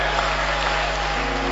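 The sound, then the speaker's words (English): An audience claps steadily, a dense, continuous wash of many hands at an even volume, with a low electrical hum running underneath and no voices. “Those who are clapping, may something good happen to you.”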